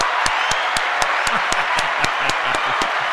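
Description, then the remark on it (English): A steady round of applause fills the space, dense and continuous, with sharp claps landing in a fairly even rhythm on top of the wash of crowd clapping. “Let's give a round of applause for him.”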